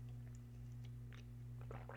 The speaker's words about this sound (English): As I sip some water, because I'm a talker, if you can't tell. And of course, if you know me, I can talk all day.